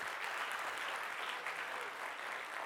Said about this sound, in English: Everybody on the setup team, give them a round of applause.